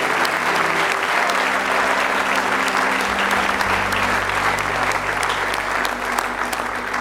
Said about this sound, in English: Give the Lord one more good hand clap if you will.